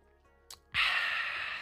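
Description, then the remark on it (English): A short soft intake, then a loud, steady, airy rush of noise that lasts about a second without stopping, consistent with someone sipping water. No one speaks. “Let me just have a sip of water.”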